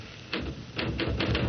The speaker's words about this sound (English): Listen, will you knock it off with the typing and look at me for Pete's sake?